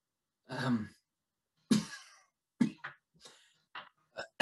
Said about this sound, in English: And if this cough keeps coming worse, just let me know. I can maybe have some connections that could help now.